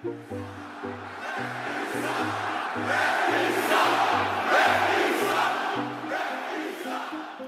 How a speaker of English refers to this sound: Does the sound of those 18,000 people screaming at you or booing you, does it sound any different than it sounded when you started in 1991? Yeah, there's a little more anger involved.